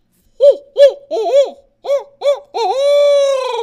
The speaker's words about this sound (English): All right, my number 3 is going to be an owl hoot.